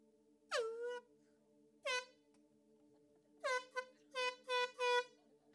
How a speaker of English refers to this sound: Everyone's awake now, right? Good. Who's blowing foghorns in church? Well, here's the deal. I had to wake everyone up. I couldn't help it.